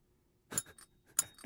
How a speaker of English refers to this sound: And then if you have done the thing, you ring a bell.